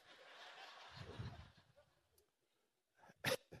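A single sharp, loud sneeze bursts out near the end, after a stretch of soft murmuring crowd noise and a brief lull.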